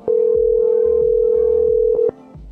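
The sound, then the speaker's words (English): A single loud, steady ringback tone of about two seconds from an outgoing phone call to someone selling things, which goes unanswered, then it cuts off. Soft background music with a thumping bass line plays underneath throughout. “Why they put things for sale and then not pick up the phone?”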